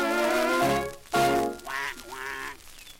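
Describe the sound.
A run of loud, nasal duck quacks, three or four drawn-out honking calls in quick succession, with a brief pause between the first two.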